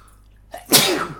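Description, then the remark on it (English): One loud, sharp sneeze, preceded by a quick intake of breath, with a hissy burst that trails off over a fraction of a second. No one speaks. “I've got the sniffles.”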